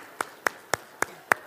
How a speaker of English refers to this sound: Nice round of applause, ladies and gentlemen.